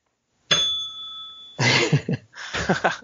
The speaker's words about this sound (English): Is that like the screw up button? Whenever you screw up on the podcast, you're gonna ding that bell.